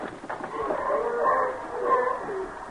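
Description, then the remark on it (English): A dense chorus of hundreds or thousands of seals barking and honking together on rocks at the Farallon Islands, many overlapping calls forming a steady, fairly loud din with no pauses and no voices. “And look at those seals down there on the rocks. Why, there must be hundreds of them.”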